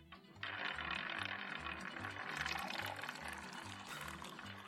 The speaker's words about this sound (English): Liquor Roulette. Why is he puking before the dice stops rolling? Why is there no fart at the end of that? Because there's a puke. I didn't want to overdo it.